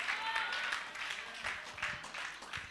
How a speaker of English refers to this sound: If you can say yes, you can clap. If you can't clap, you can say amen.